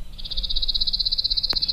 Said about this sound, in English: But confirming the sound on this lovely spring day thrilled me to the marrow by knowing I'd heard for the first time this year the song of a chipping sparrow.